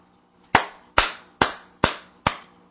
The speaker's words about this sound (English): First time I've clapped in response to a YouTube comment ever.